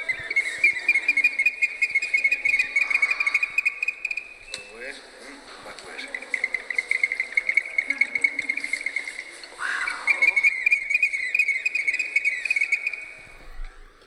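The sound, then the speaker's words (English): A ceramic whistling bottle with water inside gives a shrill, trilling whistle imitating a monkey, held in three long warbling stretches with short breaks between, fairly loud. “It's more with whistling bottles. It's with monkeys. Monkey sound.”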